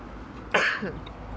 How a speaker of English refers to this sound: I need to cough again, this ain't good.